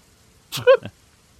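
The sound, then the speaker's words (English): A person imitates a cat's sneeze: a quick breathy burst, a squeaky tonal middle and a short sharp finish, all within half a second, alone against silence. “Just starts doing the cat sneeze.”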